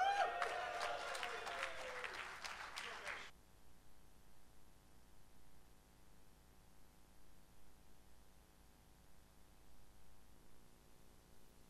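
A crowd claps for the evening's speaker in a dense, crackling burst of applause for about three seconds, then it cuts off abruptly, leaving only a faint steady hiss.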